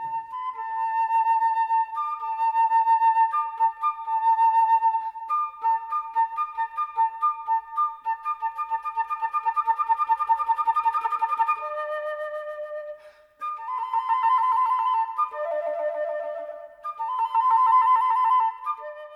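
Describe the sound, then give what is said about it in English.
A flute plays a bright, birdlike passage imitating goldfinch song in a piece by Vivaldi, with rapid trills, quick pitch bends and repeated chirping figures, heard alone for about nineteen seconds. “So have a listen, and then afterwards I'm going to compare the sound of the flute to the actual bird itself.”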